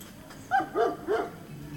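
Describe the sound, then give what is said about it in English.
A dog barks three times in quick, even succession, each bark a short, mid-pitched woof with a slightly whiny edge, heard on its own with no talking. “Un perro. Repeat after me if you're listening. Un perro. I have a dog”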